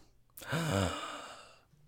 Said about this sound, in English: We both gasp because it seems real enough.